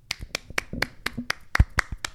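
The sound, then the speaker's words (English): A brief round of applause for director Devereaux Milburn, made of sparse, crisp claps at a steady, moderate pace, fairly loud, sounding like a single person clapping for about two seconds with no talking. “So let's have a round of applause for Devereaux Milburn.”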